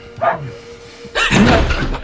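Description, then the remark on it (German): A dog barks twice: a brief, lighter yelp first, then after a pause a louder, longer, rougher bark that lingers for almost a second. “Klappe, Köter!”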